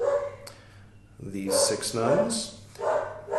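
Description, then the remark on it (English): A dog barks and yips several times in quick bursts, loud, with some whimpering pitch slides between barks, over a faint background hum. “the doggy's joining us.”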